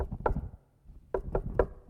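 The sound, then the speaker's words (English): Knocking on a wooden door: one rap, a pause, then three sharp knocks in a quick, even rhythm, fairly loud with a hollow resonance. “Pay attention. Open the door. I'm here.”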